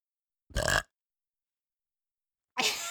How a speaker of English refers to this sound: The burps are not going away.